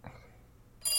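signal or alarm, telephone ringing

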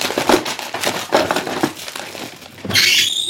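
household object, wooden drawer being opened

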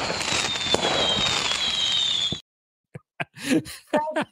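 sound effect, fireworks being shot off

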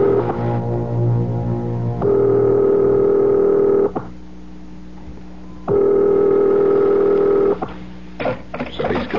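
household object, telephone being dialed

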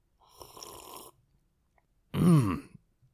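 food or drink, sipping whiskey

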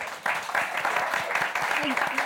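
crowd, audience round of applause

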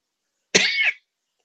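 human body sound, cough

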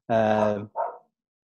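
animal, dog barking

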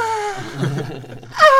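human body sound, heavy breathing

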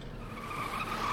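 vehicle, car tires skidding

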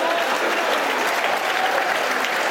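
crowd, stadium crowd applause

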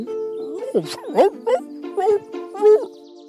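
animal, dog barking persistently

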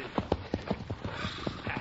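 animal, horse hooves clip-clopping

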